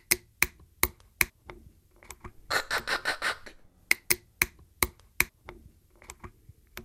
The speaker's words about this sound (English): So I have a bottle of water in my hand here. There are tines that actually go tick, tick, tick, tick, tick, and pop open as you're opening that bottle.